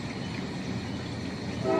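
A steady, droning train-whistle toot holds for about two seconds, fairly loud and close, swelling slightly toward the end, with no talking.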